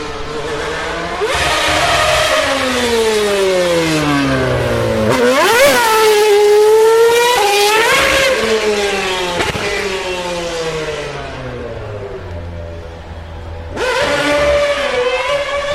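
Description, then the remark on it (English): The engine of a Mercedes Formula One race car driven by Lewis Hamilton, doing donuts on the way up the hill, revs loudly and repeatedly, its high, whining pitch sweeping up and down through several throttle bursts, with no voices over it. “we heard the sound of an F1 car.”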